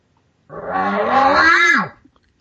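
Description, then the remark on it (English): A person imitates a bull's warning or challenge growl, adding voice to it, with one raspy, voiced call lasting about a second and a half, rough and harmonic-rich, sliding downward in pitch at the end, heard alone without talk. “And the way I'm doing a growl is I'm going to throw some voice in it, kind of, you know, kind of.”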